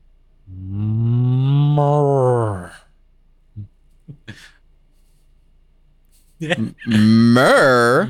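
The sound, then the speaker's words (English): A person imitates a cow with one long, low, wavering moo lasting about two seconds, followed by a few soft clicks and breaths, then a shorter burst of voice at the end. “Are you good at making any animal noises? What kind of an animal? Like an animal. Just anyone? Anyone. Like a cow?”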